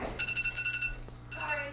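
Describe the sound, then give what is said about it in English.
An alarm clock ringing: a quick run of high, repeated electronic beeps in a short pulsing burst, followed by a few softer tonal sounds as it trails off. “That's the Beaver hotline is ringing because in just let's see, oh, it's at the alarm clock that it's ready.”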